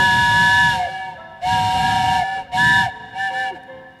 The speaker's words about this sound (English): Now the train whistle's making me nervous. You'll put your hand in the air when you want train whistle.